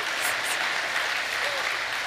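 An audience at a church service claps steadily, a dense, even wash of many hands filling the whole clip at a fairly loud level, with no pauses or distinct individual claps standing out.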